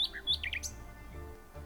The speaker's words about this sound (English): And then the nightingale sang more beautifully than ever.